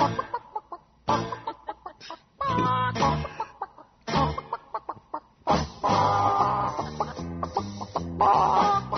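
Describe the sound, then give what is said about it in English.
A chicken clucks loudly in quick, choppy bursts, breaking into longer, squawking stretches of cackling, with brief pauses between runs. “It's all about chicken today, folks.”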